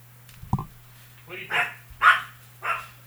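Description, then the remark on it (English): A guard dog barks four times in a loose, uneven rhythm, the barks moderately loud over a steady low electrical hum. “The guard dog is going off.”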